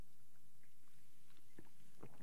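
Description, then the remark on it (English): A couple of soft, wet slurping sips of hot water, faint and brief, with a short pause between them and no talking. “Let me grab a drink of some hot water.”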